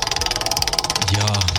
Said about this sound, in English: Yeah, a little premature on that wheel spin.